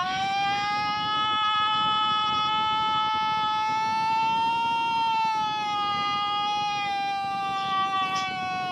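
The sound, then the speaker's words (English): A woman who won a Bigfoot calling competition in New York State imitates a Bigfoot call, a single long, high wailing howl held loud and unbroken for almost nine seconds, the pitch wavering slightly, with a faint pet bird chirp near the end. “That's the woman that won the competition over in New York State.”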